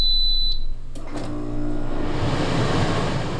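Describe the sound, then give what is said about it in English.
An air conditioner switching on: a high electronic beep, a couple of mechanical clicks, then a broad rushing whoosh of airflow that swells and holds steady. No one speaks. “Air conditioning can provide not only comfort, but life-saving relief from relentless heat.”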